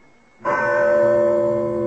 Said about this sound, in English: Well, that is quite a bell to summon the servants. Yes, my father's idea. So no matter where on the grounds they might be, they'd hear him. He had an elaborate system of rings for the gardener, the chauffeur, butler, and so on.